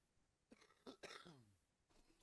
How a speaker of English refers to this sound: Yeah. Still dying of a cough after skiing.